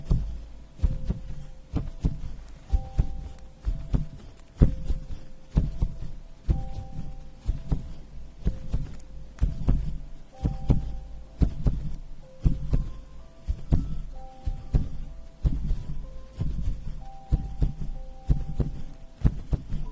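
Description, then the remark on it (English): A steady, muffled heartbeat heard through a stethoscope during a chest examination, deep low thumps repeating in an even rhythm, with faint tonal beeps and a soft background hum layered over it. No one speaks. “Just going to listen to your chest.”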